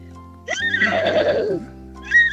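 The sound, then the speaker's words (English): A 14-year-old girl calling in by phone imitates a horse whinny with her voice, a loud, quavering, trilling neigh lasting about a second, rising then falling, with a brief fainter tail afterward. “Okay, so I can do a horse.”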